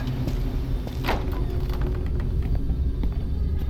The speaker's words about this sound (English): Keep the car running.